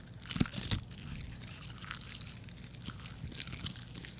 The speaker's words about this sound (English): Nice crunch.